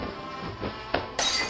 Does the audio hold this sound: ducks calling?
no